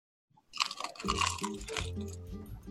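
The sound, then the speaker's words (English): A loud crunch as a crusty bagel is bitten, followed by a couple of seconds of steady crackling chewing with a low muffled rumble underneath. “Very, very, very crunchy.”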